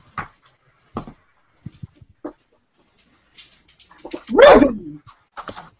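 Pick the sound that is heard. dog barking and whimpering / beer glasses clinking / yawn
dog barking and whimpering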